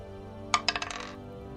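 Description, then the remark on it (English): Four dice clatter onto a hard surface in a quick burst of sharp clicks that bounce and settle within about half a second. The sound is moderately loud, with no talking. “That's four dice, right? That's four dice.”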